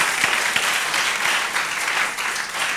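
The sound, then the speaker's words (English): An audience claps together during a church sermon, applauding for Jesus, in a steady, dense wash of applause that holds at full strength for a few seconds, with no voices standing out above it. “Clap well and let Jesus show you mercy.”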